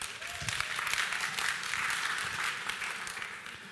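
Sustained applause from an audience, a dense, steady wash of many hands clapping at a fairly even loudness throughout, with no voices standing out.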